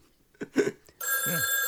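telephone bell ringing

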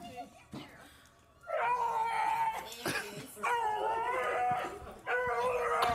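dog vocalizing

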